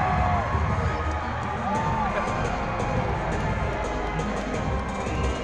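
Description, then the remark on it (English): A large crowd cheers loudly and steadily, erupting for a female performer as her theme song hits, a dense roar of voices with scattered whoops and shouts rising above it for several seconds without letting up. “I have video of them just erupting for her.”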